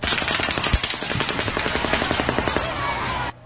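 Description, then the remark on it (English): A rapid, continuous barrage of sharp cracks as bullets from the Las Vegas shooting strike pavement, mixed with rifle reports from a distance, loud and densely packed for about three seconds before cutting off abruptly. “Here's the gunfire hitting the pavement followed by the rifle reports from the distance.”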